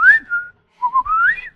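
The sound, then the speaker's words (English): Two clear human whistles with a short gap between them: a steady falling note, then a rising, wavering call, someone whistling to coax an animal out of a bush. “No, whistle it out of the bush for us.”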